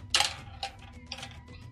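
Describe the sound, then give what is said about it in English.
A ten-sided die (D10), rolled for damage in a tabletop game, drops onto a table, landing with a bright, sharp clatter and then a few lighter clicks and a brief rattle as it bounces and settles. No one speaks. “I just dropped that D10 and it was like, it was really cool.”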